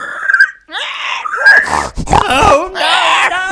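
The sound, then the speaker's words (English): Pigs grunt and squeal in a quick run of rough, overlapping bursts, snorting and squealing one after another with no talking. “The pigs are waiting for you.”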